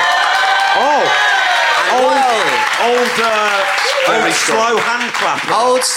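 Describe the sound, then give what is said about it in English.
An audience claps steadily in a slow handclap, loud and continuous, while voices call and shout with rising and falling pitch over the top of it. “Old slow hand clap Matthew Crosby.”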